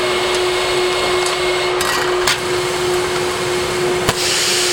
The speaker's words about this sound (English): So this is a vacuum. So it pulls it in.